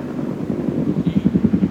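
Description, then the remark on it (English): A helicopter's rotor thumps in a steady, rapid chop, growing slightly louder and more distinct toward the end, with a low engine rumble underneath and no voices. “Helicopter. That's what that thing's called.”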